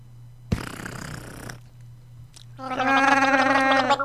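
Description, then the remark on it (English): A brief noisy slurp as a person takes a sip of water, lasting about a second, followed after a pause by a louder, pitched gargling throat sound over a steady low hum. “Here, I'll take a drink of water and see if I can do it.”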